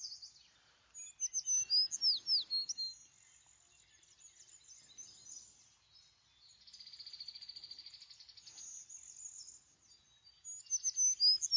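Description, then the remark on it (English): Bright, high-pitched bird chirps repeat in quick bursts, with a rapid trilling phrase in the middle and another cluster of chirps at the end; no voices, just the bird. “It's a bird, Dad.”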